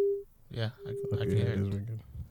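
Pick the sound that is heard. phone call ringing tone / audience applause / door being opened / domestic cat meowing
phone call ringing tone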